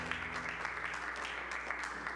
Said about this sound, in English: Give the Lord a hand clap of praise as you're seated this morning.